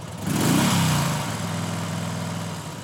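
A scooter engine, ridden by a reporter on a 35-kilometre trip to meet a farming couple in Telangana, India, revs up sharply near the start, then settles into a steady, buzzing drone, fairly loud, with no voices.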